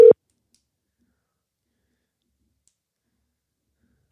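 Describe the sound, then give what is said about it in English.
Brief electronic telephone ring tones sound at the start and end, separated by about four seconds of silence, as an outgoing phone call rings with nobody answering. Clear and fairly loud, with no voices. “I guess nobody's going to answer the phone.”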